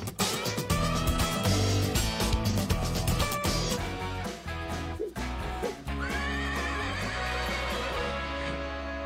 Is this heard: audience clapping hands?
no